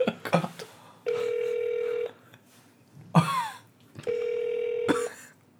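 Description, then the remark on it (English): A phone line ringing out on a call to Oasis City made live on air, two steady electronic ringback tones about a second each with a pause between, plus a few clicks and a brief swooping noise in the gap. “Now, I've taken the liberty of noting down their phone number, and for the first time, I will now be calling them live on air, and we'll see what Oasis City is all about, if anything.”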